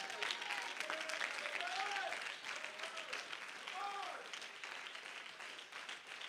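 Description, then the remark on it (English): An audience claps steadily for several seconds during a church sermon, a dense rattling wash of hands, while voices call out and exclaim above the applause. “Oh, you ought to clap your hands.”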